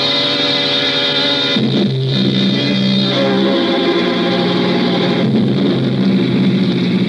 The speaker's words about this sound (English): I got into the car again and drove on slowly. I was getting to hate the car.